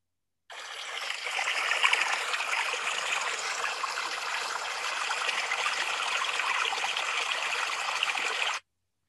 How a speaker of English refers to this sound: want to pour out some libation for them and just give a deep gratitude of Ashe.